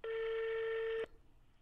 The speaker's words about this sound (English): Let's see if we get him on the phone. See if he's on a plane. But what time is it there? Shh. It's a European ring.